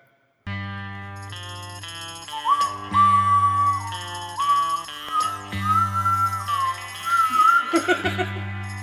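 A piercing, sliding death whistle tone rises and wavers over a steady backing of sustained musical chords, loud, continuing for several seconds with no talking.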